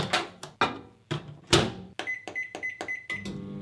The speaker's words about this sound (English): Oh. It's a microwave. Yeah, that's right. Famous sound there.